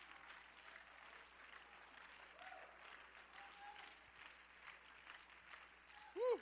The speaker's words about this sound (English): Come on, clap your hands and let's praise the Lord.